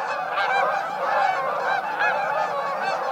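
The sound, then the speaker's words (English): A flock of migrating Canada geese flying high overhead in V formation, returning from nesting in Canada and Alaska, honking continuously; many overlapping calls form a steady, clamorous chorus with no talking. “The migrating Canada geese heard here are returning from nesting in Canada and Alaska.”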